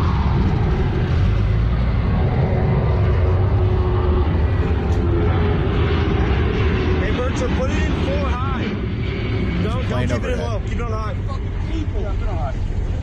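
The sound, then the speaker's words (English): A loud, steady jet-engine roar of a plane at Kabul airport fills the whole stretch, unrelenting, with faint shouting voices rising over it in the second half. “Those are people falling off that fucking plane.”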